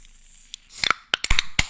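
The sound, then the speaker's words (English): A pressurized beer can cracks open: a short fizzing hiss followed by several sharp, bright metallic clicks and snaps from the tab, with no voices. “This can feels pressurized. It might spray.”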